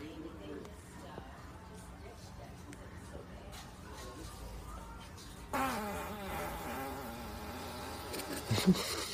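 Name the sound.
fart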